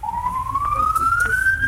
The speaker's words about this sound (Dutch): Wel, ik hoor skoto. Er is een sirene voorbij. Ja. Naar de Roko de Dubai, ja. Mm-hmm. Ja. Dat is zo. Dat is van die Covex ambulance langs de rij.